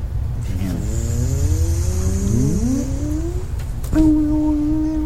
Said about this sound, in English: You just hear like a shriek in the distance. It's that yell while being transported, so it's the voice that gets all like right.